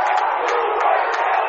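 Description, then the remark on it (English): A hockey arena crowd in Weathersfield, at a game between the Hornets and the Eagles, cheers and shouts in a loud, continuous roar, with scattered whoops and yells rising out of the dense wash of voices throughout. “And what a crowd!”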